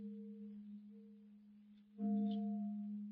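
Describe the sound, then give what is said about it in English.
A church bell at the old church rings alone with a low, steady hum that lingers. Partway through, a fresh, louder stroke sounds and its tone swells and sustains to the end. “Church bell, all right? Yes. Coming from down toward the old church, too.”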